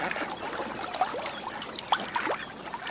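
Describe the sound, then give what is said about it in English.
Soft, steady water ambience of a tidal wetland on Iona Island at Stony Point, New York, along the Hudson River estuary, a continuous gentle wash with small lapping splashes and drips scattered throughout. No one speaks. “The island is one of four tidal wetlands located along the Hudson River estuary.”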